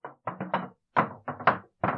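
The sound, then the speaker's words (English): At midnight, someone knocks on wooden shutters: about eight firm, hollow raps in uneven clusters, fairly loud, each ringing briefly before the next, with no voices. “And at midnight, there was finally a knocking on the shutters.”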